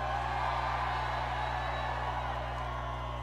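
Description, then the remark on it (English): A large crowd at Arrowhead Stadium, Chiefs Kingdom fans celebrating the world champs, applauds and cheers in a dense, continuous roar that holds steady throughout, with whoops and yells blending into the wash of clapping. “So give a round of applause for everybody that's standing here today.”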